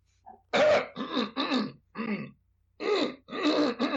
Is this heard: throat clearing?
yes